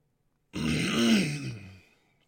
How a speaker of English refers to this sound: Sorry, I'm clearing my throat in the microphone so much.